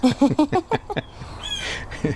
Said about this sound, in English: And I also want to thank our little bird friend in the background there for being a part of our interview.